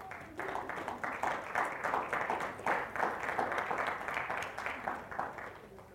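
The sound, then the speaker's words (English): An audience claps steadily and continuously for several seconds in the morning, welcoming two people invited up to join the speaker, a dense wash of many overlapping hand claps at an even, moderate loudness, with faint murmuring voices underneath. “There's lots of clapping going on, and keep it going.”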